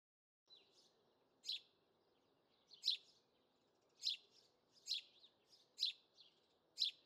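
A songbird in a garden, on a day without rain, repeats a series of sharp, high chirps, about six in all and spaced roughly a second apart. They ring out clearly over a soft, steady outdoor hum, with no voices.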